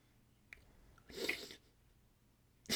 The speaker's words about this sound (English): hang on, I'm gonna sneeze. I'm sorry. Maybe.